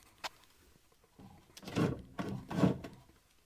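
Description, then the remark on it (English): A sharp click, then an empty drawer scrapes and rattles as it is pulled open in two rough, wooden slides, with no talking. “Nothing is in there, but something that helps you pull a drawer open would be a fixture.”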